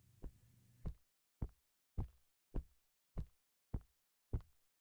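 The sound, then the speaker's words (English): Muffled, heavy footsteps thud at a steady walking pace, about eight dull steps in a row, outside a bedroom, heard from inside it as if through a wall or closed door. No one speaks. “I heard footsteps outside the bedroom, and I froze.”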